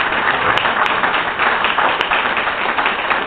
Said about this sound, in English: Maybe if everyone doesn't mind, I think a big round of applause goes out to the organizers of the event for making it such a nice success.